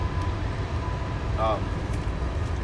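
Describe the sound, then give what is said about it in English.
A steady low rumble of a train passing outside fills the whole stretch, with a brief high-pitched squeal rising and falling midway through. No one speaks over it. “But can you pause for a minute? Yeah, we're going to yeah, wait for a second. The train is the whole thing.”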